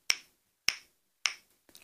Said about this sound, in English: Trippity-trop, trippity-trop, went his hooves upon the bridge.